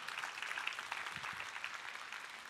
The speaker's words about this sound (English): Yeah, you ought to applaud.